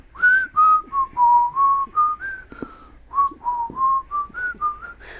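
Someone whistles a short melodic tune, clear pure notes rising and falling in a steady phrase of about a dozen notes, with a brief pause midway and no talking.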